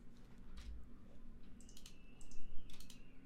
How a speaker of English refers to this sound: Stop clicking on things. There we go. What are you doing? There you go. I'm trying to type things and you're like ruining it.